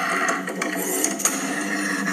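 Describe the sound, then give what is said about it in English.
An office printer whirs into action with a steady mechanical hum and scattered clicks and clacks, continuous, with no voices present. “And the printer just starts up.”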